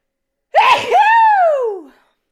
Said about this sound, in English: Oh, no, I'm going to sneeze.